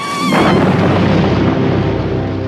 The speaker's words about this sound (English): She successfully burns the shark, but the entire boat is rocked with a massive explosion.